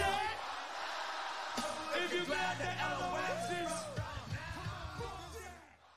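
A large crowd at Madison Square Garden chants and yells together in a loud, sustained roar, many overlapping voices rising and falling in rhythm before fading slightly at the end.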